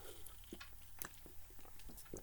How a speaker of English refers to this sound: Oh, sorry, just took some water.